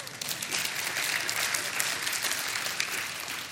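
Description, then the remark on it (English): A church audience applauds steadily, many hands clapping in a dense, continuous wash of sound that stays fairly even in loudness throughout, with no voices standing out. “And yeah, you can clap for that.”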